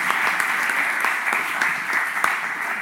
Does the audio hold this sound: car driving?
no